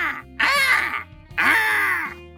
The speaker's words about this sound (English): the jet black bird stood on the cash register and stared at me. As soon as my fingers reached the receiver, it started screaming louder, faster.